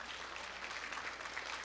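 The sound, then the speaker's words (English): A crowd applauds a newly married couple, clapping together in a steady, dense wash of applause, many hands blending into a bright, crackling roar that holds an even level throughout, with no voices rising above it. “Give this lovely young couple a nice big round of applause.”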